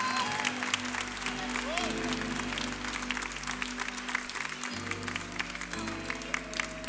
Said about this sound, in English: One more time. Let's give the Lord a great round of applause and praise. The Bible says, clap your hands.